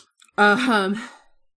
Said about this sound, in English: Oh, it's me. You can find me yawning. Good night.